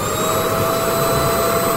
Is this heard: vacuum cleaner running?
yes